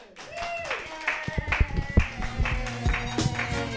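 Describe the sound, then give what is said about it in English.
Scattered, irregular handclaps from a small audience, fairly loud, mixed with voices cheering and calling out over the clapping. “Keep your hands clapping”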